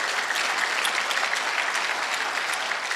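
Steady, dense applause from many hands, a continuous crackling wash of clapping that holds at an even loudness throughout, with no voices standing out.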